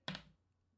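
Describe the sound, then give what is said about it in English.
Dice are rolled for damage onto a table: a sharp first knock followed by a few quick rattling taps that die away within a third of a second, with no one speaking. “Oh, it was a 4 and then it rolled off the paper and it became a 1.”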